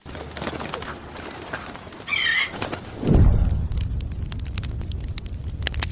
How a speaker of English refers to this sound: Can you tell what it is? I think it sounds like a bird.